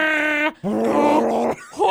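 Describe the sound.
Someone imitates a Wookiee roar, a Chewbacca noise: a short, tonal, growling howl, then a longer warbling roar, and a third one starting. The calls are loud, with no talking.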